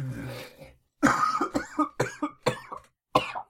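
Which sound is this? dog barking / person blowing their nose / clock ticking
person blowing their nose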